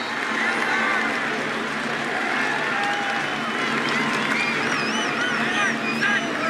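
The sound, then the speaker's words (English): A large stadium crowd at a USC football game roars and cheers in a steady, dense wall of noise after a snap by Jake Olson, with shrill whistles rising above it toward the end. “Listen to the crowd.”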